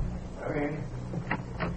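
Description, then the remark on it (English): Two sharp, evenly spaced knocks on an office door at a local FBI field office, against a low background hum with a brief murmur of indistinct voice before them. “The following morning, at the local FBI field office, Special Agent Taylor knocks on the door of Agent in Charge Milburn's office.”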